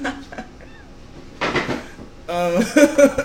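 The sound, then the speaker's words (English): Clattering and rattling of objects being shuffled around in a drawer while someone searches for a green lighter, in two busy bursts, with a voice sounding briefly over the second burst. “Where the other lighter at? The green one? Yeah. In a drawer. What should happen? No, this drawer.”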